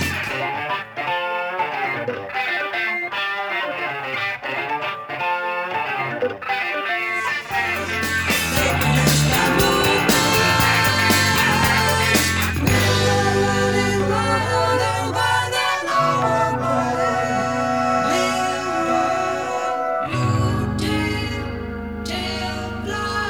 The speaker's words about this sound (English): Back to the verse riff. Let's listen again to how tightly locked in the guitars and keyboards are on that riff.